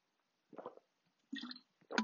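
Three short, wet swallowing sounds from someone gulping water, each a brief soft squish separated by quiet pauses, the last one slightly louder and sharper.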